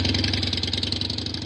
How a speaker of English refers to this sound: things quieted down until around 1:20 when he heard the roar of a motorcycle going down the street.